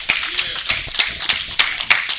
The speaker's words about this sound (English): Go ahead and give God a hand clap of praise up in here, up in here.